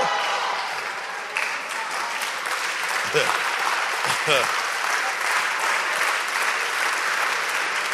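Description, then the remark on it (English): An audience, including those upstairs, claps steadily at the close of a church service: a dense, continuous patter of many hands with a few cheers and voices rising briefly above the applause. “Okay, then let me hear you clapping upstairs.”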